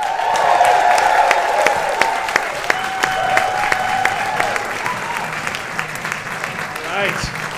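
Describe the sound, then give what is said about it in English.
A crowd at a comedy show at the Bell House bursts into sustained applause as comedian Matt Bronger is welcomed to the stage, dense steady clapping with scattered whoops and cheers rising above it, holding loud for several seconds before slowly thinning out. “Please welcome to the stage Matt Bronger.”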